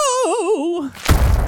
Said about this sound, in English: Thud was the sound of Piglet's body as it hit the floor.